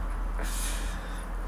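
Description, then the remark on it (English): A dog gives a short, breathy snort, a single noisy puff of air, with no talking, while playing with a football. “Stop playing football with the dog.”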